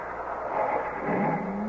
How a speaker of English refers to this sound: The rope. To the car. Won't work. The wheels, they're just spin in this sand. It won't work.